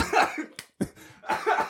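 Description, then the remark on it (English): A series of harsh coughs in quick bursts, roughly four of them, with a short silent gap in the middle and no speech. “But sorry about the coughs.”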